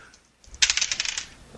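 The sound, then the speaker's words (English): Dice rattle and tumble across a hard surface, a quick burst of sharp, overlapping clicks lasting about half a second, fairly loud, with no voices; dice rolled for a coordination check in a tabletop role-playing game. “Roll your coordination.”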